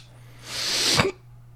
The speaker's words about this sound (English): See, right now, you got hiccups.